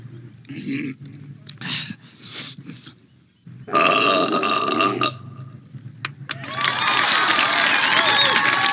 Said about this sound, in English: Frankly, I'm not too wild about this next event, but it has become a tradition here at Adams. The belching contest.